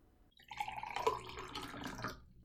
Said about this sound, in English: Here, have a seat. I will pour you a glass of wine.